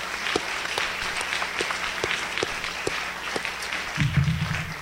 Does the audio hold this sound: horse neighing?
no